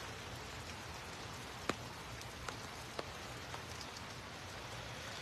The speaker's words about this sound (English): Folks, look at this. A rainy Saturday,